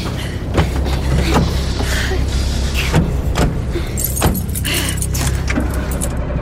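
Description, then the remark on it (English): Keys jangle amid a few sharp clicks and thumps, like someone climbing into a car, while a low engine rumble runs steadily underneath. Muffled voices may be faintly present. “Quick, come on, get in the car.”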